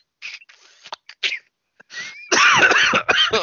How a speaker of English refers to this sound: yeah, there's the cough. I'm sorry. It's going to be there for a while.